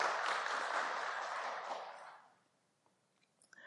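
An audience claps in a dense, steady burst of applause that tapers off after about two seconds, leaving near silence with a few faint small sounds.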